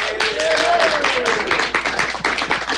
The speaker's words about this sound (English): Hey, we don't have any music for Mike today, but maybe we could replace it with some applause from our studio audience here. Can we do that?